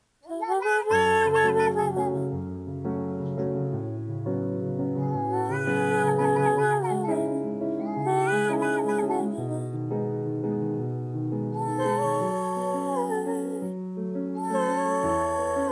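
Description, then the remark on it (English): Cat-like meows drawn out into melodic, sung notes, harmonizing in a duet with a person's singing voice over a steady musical backing, loud throughout. “Doing a duet, singing in harmony with the cat.”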